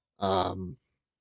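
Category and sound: human body sound, yawn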